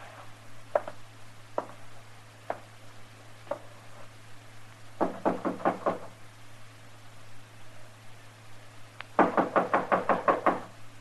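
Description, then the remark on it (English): Knocking on a door: a few slow, separate raps, then a quick burst of about five knocks, and later a louder, longer run of rapid knocks, over a low steady hum. “All right, knock on the door.”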